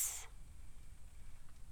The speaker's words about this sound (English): Pauses, hissing to itself, and shifts its coils.